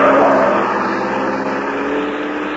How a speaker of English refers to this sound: And as you look up, a car with Ralph Leonard at the wheel swerves crazily around the corner.